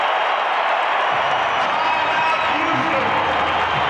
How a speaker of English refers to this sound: Got on their feet before the ball went in. This place wants to erupt tonight, and they are right now.